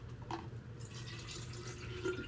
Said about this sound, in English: Filling out my water bottle.